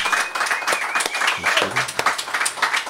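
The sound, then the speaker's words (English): A live audience applauds steadily for several seconds, dense overlapping clapping filling the room, with a few cheers and voices mixed into the crowd noise. “Give yourselves all a big round of applause.”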